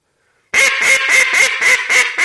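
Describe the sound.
After a brief silence, a duck call blows a quick, steady run of about seven loud, raspy quacks that step downward in a descending cadence, each note shorter, with no talking.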